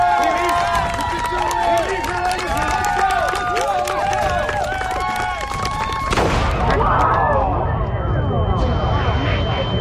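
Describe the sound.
A large crowd claps and cheers for a performer about to be locked in a lidded box and hoisted into the air for a filmed stunt, with many voices shouting and whooping over a dense patter of applause, swelling into a louder, rougher roar toward the end.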